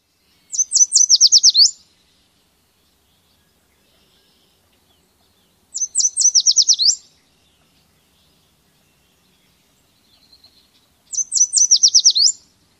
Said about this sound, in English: If you hear this clear three-section song with expanded bright elements, you know you are hearing a yellow warbler.